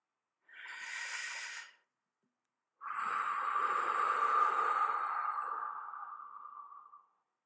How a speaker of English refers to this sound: All right, breathing in and breathing out together.